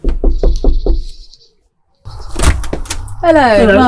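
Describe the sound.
Five firm, evenly spaced knocks on a house door, followed by a brief silence, then rustling and clattering as the door opens and a voice begins talking.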